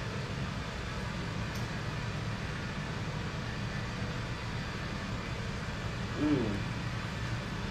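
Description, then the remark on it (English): A water truck's pump and engine drone steadily from outside, a continuous low mechanical rumble filling the whole stretch, swelling briefly near the end before settling back. “There's like a water truck out there. Pumping water or something.”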